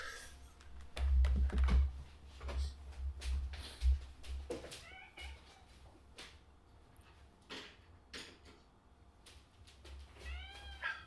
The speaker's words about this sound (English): One second. I need to pull a cat out of a sink. No problem.